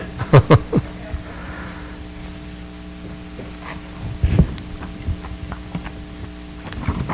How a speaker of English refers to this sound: Hi. Can you hear me, or can you hear the static at least?